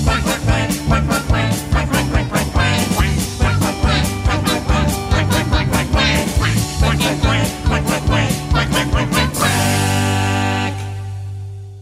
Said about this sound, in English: But the duck goes. Quack, quack, quack, quack, quack, quack, quack, quack, quack, quack, quack.